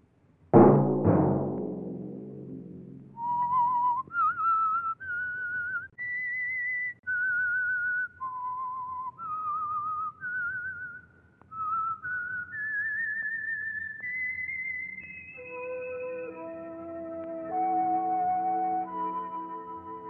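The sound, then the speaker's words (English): A person whistles the slow, eerie theme melody of the Signal Oil radio program The Whistler alone, clear, with sustained notes rising and falling, opening after a sharp orchestral stab and ending over soft accompanying tones. “Let that whistle be your signal each Sunday for the Signal Oil program, The Whistler.”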